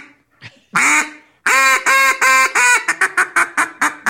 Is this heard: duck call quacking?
yes